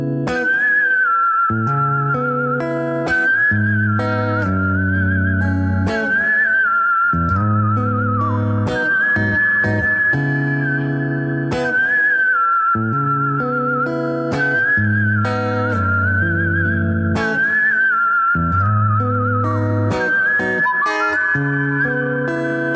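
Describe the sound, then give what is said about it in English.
A song performed with a prominent whistled melody line riding over steady instrumental backing, the whistle sustained and gliding between notes, loud and continuous throughout, with no talking. “I feel like I want to play like a little snippet of the whistle version, just so people can understand what I'm saying.”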